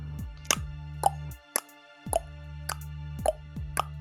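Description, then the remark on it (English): A machine lever, after being pulled, ticks steadily, roughly seven sharp clicks about half a second apart, over a low mechanical hum that briefly cuts out midway. No one speaks. “Okay, so you you pull the lever, and there's a ticking sound. You hear a ticking sound.”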